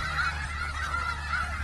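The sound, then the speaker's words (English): Chickens in a video clip being played give several honking calls in quick succession, nasal and fairly loud, over a steady low hum, with no one talking. “look at all these chickens”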